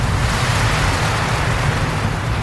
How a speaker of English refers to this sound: Whoa! Here it goes! Whoa! Whoa! How cool is this? I can't believe how high the water is going! The water from Old Faithful can reach heights of 180 feet! Ah! Amazing!